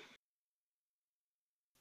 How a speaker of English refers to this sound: Knock on wood.